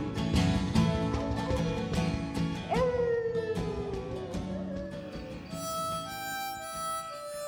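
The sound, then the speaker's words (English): A long, sliding dog howl rises and then slowly falls, set against dense, steady instrumental music that carries on underneath and after it. “And the blue heart howled at the moon.”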